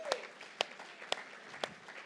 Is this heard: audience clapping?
yes